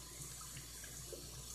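household object, water running

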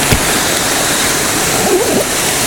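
nature, waterfall rushing water

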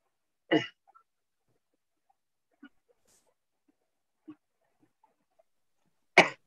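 human body sound, coughing

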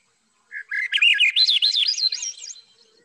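bird, thrush call

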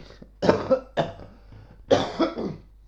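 human body sound, coughing

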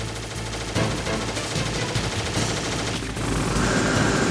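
sound effect, video game gunfire

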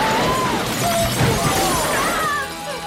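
sound effect, glass window shattering

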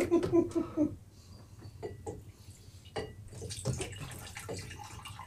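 food or drink, pouring a drink

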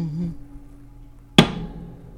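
impact, gong being struck

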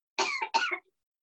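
human body sound, cough

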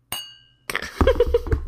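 household object, glasses clinking

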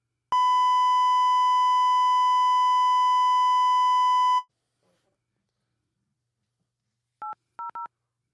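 signal or alarm, phone keypad dialing tones

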